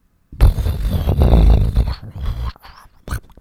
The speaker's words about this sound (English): That was thunder.